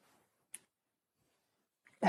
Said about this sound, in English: Whoop, sorry. The dog agrees, by the way.